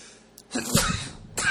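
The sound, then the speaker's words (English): A single forceful sneeze from a person having an allergy attack caused by a cat bursts out, a sharp breathy blast that trails off quickly, followed by a brief short exhale. “having an allergy attack.”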